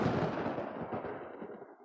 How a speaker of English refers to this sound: Give me a lightning strike.